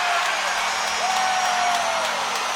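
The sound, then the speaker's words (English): A hockey crowd on its feet roars in celebration of a breakaway goal by Francesco Pinelli with 8.7 seconds left in the period, a dense, steady wall of cheering and whooping that stays loud for the whole few seconds, with a thin sustained whistle-like tone threaded through it. “And this crowd is on their feet.”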